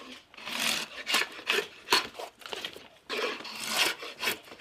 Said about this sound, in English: I'm taking the bark off of the handle and what you call a spoke shave.